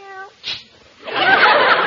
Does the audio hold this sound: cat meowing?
yes